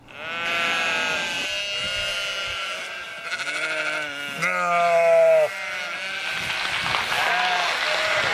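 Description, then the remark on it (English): A crowd of sheep bleating over one another in a steady, overlapping chorus of wavering cries, fairly loud, continuing for several seconds without any talking. “Fart cinema, record it before an audience of stinking sheep.”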